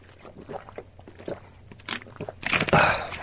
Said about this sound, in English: I need to drink some water because I've got a frog in my throat. Excuse me. One second.